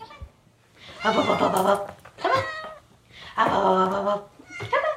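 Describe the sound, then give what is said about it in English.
A female cat meows, about four drawn-out, wavering meows in quick succession, some long and some short, fairly loud with brief pauses between and no one talking. “She's the perfect little kitty.”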